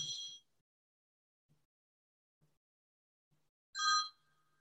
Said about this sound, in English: Sorry, there was somebody's phone ringing. I don't know if it was mine or yours. Oh, I think it's mine over on the other side of the room.